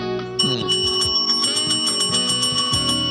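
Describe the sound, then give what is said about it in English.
A bell, used as a segment cue, rings repeatedly in quick, even strikes, loud, its bright tones sustaining over a shifting low melodic accompaniment. Nobody speaks. “Trash bell for Pornstash.”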